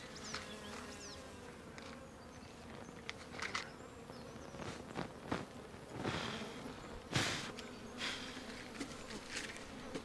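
A steady drone of bees buzzing fills the whole stretch, layered hum holding constant while scattered soft thumps and rustling clicks pop up now and then.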